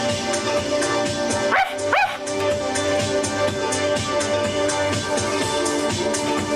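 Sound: dog barking and whimpering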